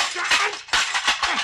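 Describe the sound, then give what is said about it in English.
A telephone is smashed in a rapid series of loud, harsh crashing impacts, four or so noisy bursts with clattering between them and no voices. “the phone, you busted I it.”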